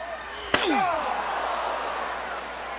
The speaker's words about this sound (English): Oh, God, a chair shot just makes you sick, makes your blood curl.